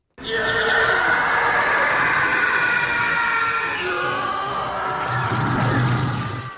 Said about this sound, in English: The first time any of us saw or heard a TIE fighter.